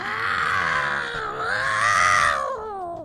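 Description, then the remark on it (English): A person imitates the noises cats in heat made in the neighborhood, one long, loud, wavering yowl that rises and falls in pitch for about two and a half seconds before trailing off. “So he was out early this morning, and there were some cats in heat in the neighborhood. What noises were those kitties making again for you”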